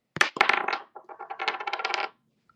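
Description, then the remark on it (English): Dice are rolled to pick a number for choosing a betting line: two sharp clacks, then a quick rattling clatter that tumbles for a couple of seconds before stopping, with no voices. “You're going to roll a dice.”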